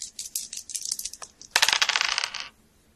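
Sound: dice being rolled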